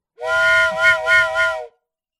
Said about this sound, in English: Blow the whistle.